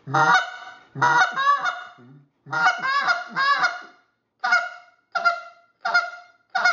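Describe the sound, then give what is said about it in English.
A hunter's goose call sounds loud, calling to geese, starting with a few drawn-out, wavering moans, then shifting to four short, sharp clucks at a steady rhythm. No one is talking. “So I'm gonna give them a little cluck and moan.”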